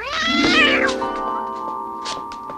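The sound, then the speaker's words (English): A single loud, drawn-out meow from Kat, Holly's indoor cat in a film, its pitch sliding downward before fading, followed by a faint steady hum with a few soft clicks. “The cat has to keep his guard up whenever men come over, but sometimes he gets to jump and walk on them.”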